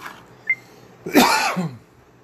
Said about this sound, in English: Nothing better than starting the podcast off with a cough.